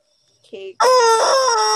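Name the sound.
chicken crowing and clucking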